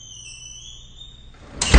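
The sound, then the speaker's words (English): A small cat flap door creaks with a thin, drawn-out squeak as someone goes through it quietly, then swings shut with a sharp clatter at the end. No voices. “Okay, I'm going through the cat door, but quietly.”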